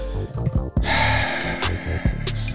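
Loud heavy breathing: a run of sharp, rapid gasps and snorting breaths, one long heaving exhale in the middle, with a low steady backdrop underneath and no talking.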